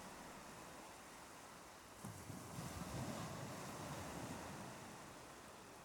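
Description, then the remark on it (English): A soft, hollow rush of distant sea waves heard inside a large pink shell cupped to the ear, a steady whooshing wash that swells gently partway through and then settles, with no voices. “Cupping it to her ear, she heard the sound of a gently turning sea very far away.”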